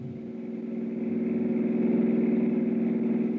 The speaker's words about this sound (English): From where I stood, I couldn't identify the car that suddenly roared away from the back of the house, but one thing was obvious, the driver was in a hurry, and I was getting nowhere.